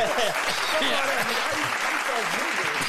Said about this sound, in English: Round of applause.